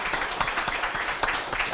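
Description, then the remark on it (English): A crowd applauds the people who brought the food and song for the evening, a dense wash of many overlapping hand claps at a fairly even level with no voices standing out, continuing throughout. “How about a round of applause for these guys bringing us the food and song tonight?”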